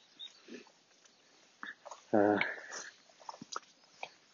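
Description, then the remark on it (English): A dog on a lead, walked by a woman on a wet, cold day in June, lets out one short, loud yelping bark midway, surrounded by quieter snuffles and small clicking noises. “Come on, dog.”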